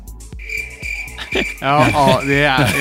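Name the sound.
crickets chirping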